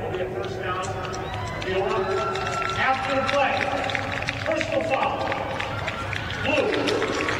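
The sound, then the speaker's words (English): Beulah Minor fans at a football game stand, clapping and cheering in a steady, dense wash of noise that swells slightly midway, while a man talks over it throughout. “and the Beulah Minor fans are in front of us, and they're clapping and standing because they know offensively it's been tough.”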